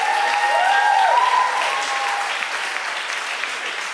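An audience cheers and applauds, giving Jesus a shout, a dense steady wash of clapping with a few rising whoops and shouts in the first half, holding loud throughout.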